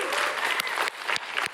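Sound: audience applause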